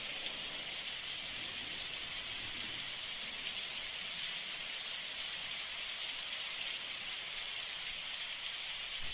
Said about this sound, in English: Thunderstorm. I like this one. Thunderstorm.